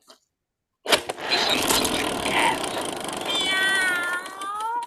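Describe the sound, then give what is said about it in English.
A cat yowls: a loud, harsh, scratchy burst that lasts several seconds and ends in a wavering, high-pitched drawn-out cry. “That was a cat.”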